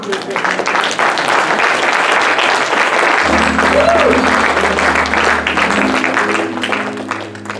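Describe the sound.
An audience claps loudly in a dense, steady wash of applause that lasts throughout, mixed with scattered voices; about halfway, a low sustained musical tone joins beneath it.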